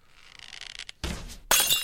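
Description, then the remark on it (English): Glass shatters as an arrow shot through the top of a window breaks it and embeds into the wall: a thin tinkling rattle, then a heavy crash at about one second, and a second bright, loud burst of breaking glass that rings on to the end. “Arrow breaks the window at top and embeds into the wall.”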